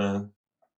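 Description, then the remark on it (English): A single sharp, voiced sneeze bursts out, fading quickly into silence, with a faint brief click just afterward. “God bless you.”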